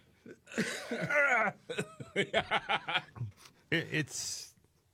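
A person laughs in a run of short, rhythmic chuckles that break into rough, breathy coughs, fairly loud, ending with a sharp hiss of breath.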